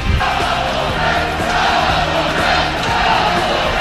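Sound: stadium crowd roaring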